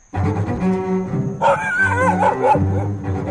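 Brady, a big golden doodle, barks and yips in an excited run at a dog park in Chevy Chase Village, Maryland, with higher whiny notes rising in the middle, over a low, steady musical backing.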